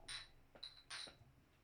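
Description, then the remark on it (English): Drink cans tap together in a toast: three bright metallic clinks in quick succession, crisp, with a faint ringing tone after each knock and no talking. “Cheers. Cheers.”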